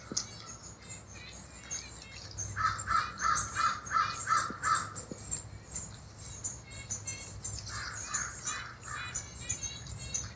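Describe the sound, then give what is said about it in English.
A crow caws in a quick run of about six harsh calls, then three or four more later, over a steady background of other birds chirping and twittering outdoors. “In the beautiful sounds of the bird relations.”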